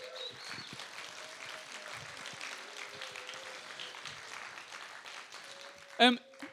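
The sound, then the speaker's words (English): Sustained applause from a sizable crowd, dense and steady throughout, with scattered cheering voices mixed in and a sharp, loud burst near the end. “Can we give these guys a massive round of applause?”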